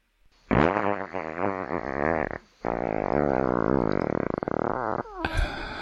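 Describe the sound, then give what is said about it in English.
A long, squeaky fart sound effect with wavering, whistling pitch, broken by a brief pause, then continuing and ending in a sputtery, buzzy burst. Loud, no talking. “That was a long and squeaky one.”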